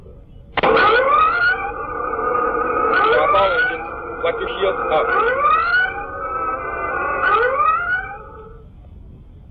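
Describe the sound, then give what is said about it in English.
A starship red alert siren blares in loud, repeating rising whoops, about four cycles with bright harmonics, while a voice calls out orders over it. “Sound red alert.”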